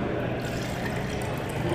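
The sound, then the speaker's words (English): Water pours into a cup in one steady, continuous splashing stream that lasts a couple of seconds at an even, moderate loudness, with no talking over it. “Pour myself some. Pour you some.”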